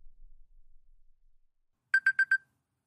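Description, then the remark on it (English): An alarm clock goes off at 6 a.m., with the temperature at 12 degrees, ringing in a quick burst of four sharp, evenly spaced electronic beeps, loud, after a stretch of near silence with faint low rumble. “That's the temperature at 6 a.m. when my alarm goes off.”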